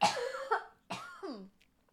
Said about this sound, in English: Sorry. I love that mid-fuck cough.